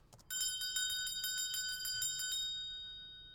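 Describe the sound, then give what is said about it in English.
A small bell rings rapidly, shaken over and over in a quick jangling burst for about two seconds, then its clear metallic tone lingers and fades away. No voices. “Oh, and that bell?”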